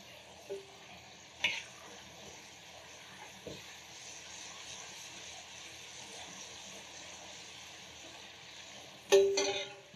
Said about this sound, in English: We're gonna put our lamb in, just gonna give it a quick fry. And while that's frying, we're gonna start off with our Panang curry, a little bit of oil.